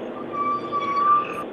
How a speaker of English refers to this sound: Ooh, sounds like someone needs to work on their brakes.